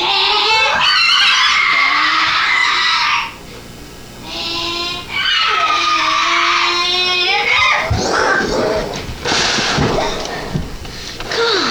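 In a video game, a Lamborghini's tires squeal loudly and steadily with rising and falling pitch, broken by a brief pause, followed by a roaring engine and rougher skidding noises, all continuous.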